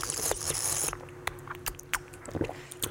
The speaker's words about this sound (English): That's some of the grossest sound I've ever heard. I'm like across from you when I heard that gulp.